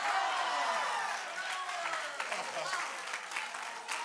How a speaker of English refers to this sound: Somebody clap your hands unto the Lord and shout power.